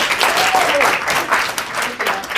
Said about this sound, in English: So everybody, please give me a huge round of applause for my friend, Gary Vee.